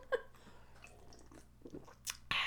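Quiet mouth sounds of two people sipping drinks, Smith and Forge hard cider and Prophecy Pinot Grigio wine: small wet slurps and swallows scattered across a couple of seconds, ending in a louder breathy exhale.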